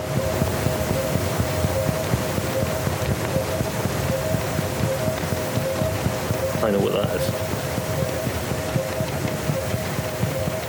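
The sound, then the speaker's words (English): An underwater recording of a ship's engine: a steady, continuous rumble with a persistent tonal hum throughout, and a person briefly speaking over it near the end. “You're spot on. It's definitely a vessel.”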